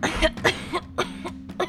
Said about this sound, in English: And the one that you're kind of coughing on winces and goes, "I hear the curse is contagious."